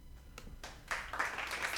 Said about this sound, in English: Let's clap it up for Ben Simmons, man.